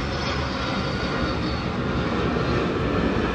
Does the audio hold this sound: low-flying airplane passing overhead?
yes